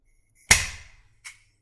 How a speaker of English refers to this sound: Ooh, let's pop that bubbly. Let's see how quietly I can do it.